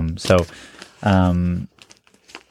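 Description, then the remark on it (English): Loose sheets of note paper in a pocket crinkle softly in a scatter of small crackles, following two short voiced sounds from someone. “In fact, if you look in my pocket, I just have a lot of loose pieces of paper where I jot notes and stuff too.”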